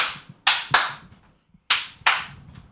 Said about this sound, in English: Do we need a new clap for our video? Should sure I we also do one?